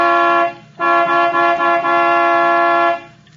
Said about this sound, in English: All right. I'll give it the horn.